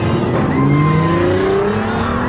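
A car engine revs up and the vehicle pulls away as the Joker and his goons drive off, its rising engine pitch loud and continuous over a couple of seconds, with no voices.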